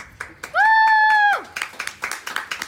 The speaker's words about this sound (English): Applause.